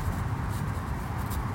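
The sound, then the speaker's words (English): Soft paper rustling and crinkling as a vellum envelope with something hard inside, a silver lion-shaped charm, is handled at a playground, with a steady low rumble underneath and a couple of slightly crisper scrapes partway through. “No, it's a vellum envelope with something hard inside it.”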